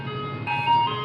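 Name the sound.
ice cream truck jingle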